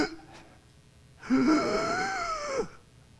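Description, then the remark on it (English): A voice imitates a man's strained, breathy gasp for air, one drawn-out rasping sound lasting over a second that rises and then falls off, loud, after a brief quiet moment. “I want, as this man in your mind, I want you to picture as he's gasping for air.”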